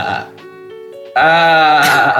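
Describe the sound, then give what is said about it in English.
Someone imitates a sheep bleating. A low, wobbling vocal lead-in gives way to a loud, strained, quavering bleat held for about a second, with nothing else around it. “Well, it sounds like a desperate kind of sheep.”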